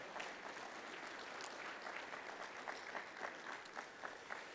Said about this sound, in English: You can give him applause as he comes now, even though it's not his birthday.